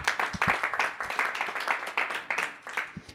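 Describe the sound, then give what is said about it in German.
An audience gives a big round of applause to thank a guest, dense overlapping claps forming a steady, bright patter with a few sharper individual claps standing out, sustained at moderate loudness throughout. “Ein riesen Applaus für dich, bitteschön.”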